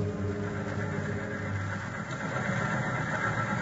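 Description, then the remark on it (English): A train pulling into the station at Carbondale, Illinois, past midnight: a steady, deep engine rumble with a low humming drone and faint rattling vibration, holding an even loudness throughout, with no voices. “It is past midnight as his train pulls into Carbondale, Illinois, some 20 miles from the Logan home in Marion.”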